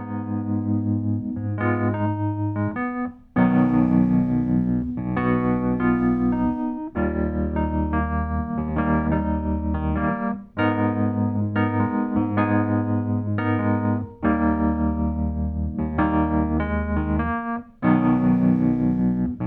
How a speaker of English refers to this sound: The first of those was a Wurlitzer electric piano.